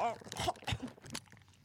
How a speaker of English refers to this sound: ASMR. I'm going to put the candy in my mouth. I'm now chewing the candy.